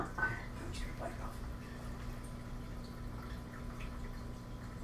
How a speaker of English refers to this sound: I'm just going to put it over it. It's going to be cold. I'm warning you now. Okay. Just a little bit of water. Ah. Yeah, it's cold.